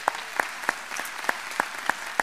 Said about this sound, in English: Can we just clap our hands and welcome our church family this morning?